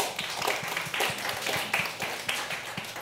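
A group applauds steadily, many hands clapping in a dense, continuous patter of sharp claps at moderate loudness, with no one speaking over it.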